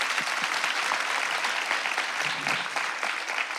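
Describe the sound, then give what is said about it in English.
An audience claps steadily for several seconds for a panel of speakers, a dense, even wash of many hands with no single claps standing out and no voices talking over it. “Give our panelists a round of applause.”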